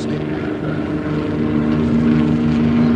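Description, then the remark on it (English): Loud, steady engine and rotor drone of low-flying army helicopters, continuous for the whole stretch, growing slightly louder toward the end, with no voices. “Army helicopters coming in low.”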